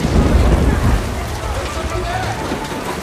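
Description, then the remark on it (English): Steady rain hisses across a surface, a dense, even patter with a heavier low rumble at the start that eases into a constant wash. “Starting to rain.”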